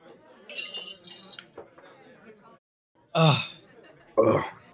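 Glasses clink together a couple of times in a brief toast before drinking, bright ringing taps, followed by two short throaty bursts like a cough or gulp.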